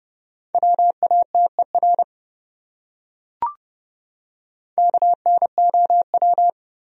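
Fast Morse code at about 30 words per minute, sending words from the top 100 common words: two quick bursts of short and long beeps on a single steady mid-high pitch, separated by a pause and a brief click.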